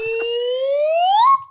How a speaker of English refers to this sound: So it's a half slide whistle today.